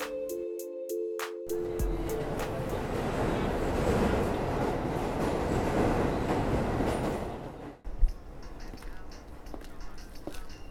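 A short run of electronic chime tones gives way to the loud, steady roar of a subway train rolling along the rails, which drops off abruptly with a clunk into quieter rumbling.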